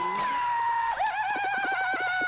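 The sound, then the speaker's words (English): A loud, sustained high-pitched scream by Jim Carrey from the film The Mask, its pitch wavering and dipping briefly before holding steady and strained to the end, with no other voices. “That is Jim Carrey in The Mask.”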